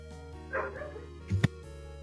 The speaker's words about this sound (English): With a very angry dog. Yeah, dog's acting up about something. Not me this time.